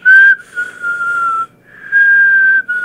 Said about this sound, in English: Are you sucking in or are you blowing out? Both. It's hard for me to whistle. There you go. But I'm sucking in. You're sucking in? Yeah. You supposed to whistle blowing out? Well, yeah, but then you can suck in, too.